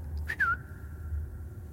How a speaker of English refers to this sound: This bird sings the most beautiful song. It finds a master, a shoulder it likes to perch on. Sings to this person for the rest of its days.